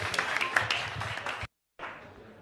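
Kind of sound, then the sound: crowd, audience applause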